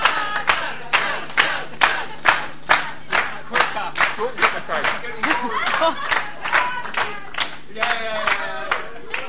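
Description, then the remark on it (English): An audience claps in a steady, fast rhythm while voices shout and cheer along, urging a man on as he tries to eat a cracker; the chanting swells into louder, higher whoops toward the end. “Yes, cheer him on.”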